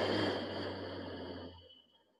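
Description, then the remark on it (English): A single soft, airy breath, a long exhale that slowly fades away, with no talking. “Breathe in. Breathe out.”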